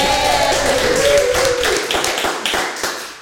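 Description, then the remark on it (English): An audience applauds two quiz contestants who passed, in a dense, loud burst of clapping that thins out toward the end into scattered individual claps, with no one speaking. “Big round of applause.”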